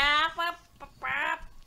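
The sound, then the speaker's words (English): A person imitates a chicken clucking with a few quick, nasal bursts followed by a longer drawn-out squawk, fairly loud, with no other talking. “Chicken clucking.”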